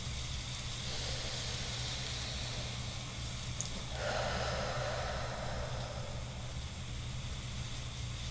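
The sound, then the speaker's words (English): A slow, airy breath drawn in and then let out, a steady hiss that shifts tone midway, moderately loud, with no talking. “Take a nice deep breath again.”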